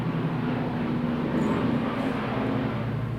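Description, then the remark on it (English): A steady, droning airplane engine roars overhead, a continuous low rumble with a faint tonal hum, fairly loud and constant throughout with no voices. “It's a plane, Sam. It sounds like a plane. It is a plane.”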